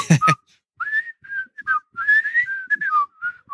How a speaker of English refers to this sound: The Andy Griffith Show. Andy Griffith Show. That was, I was going to whistle the theme song.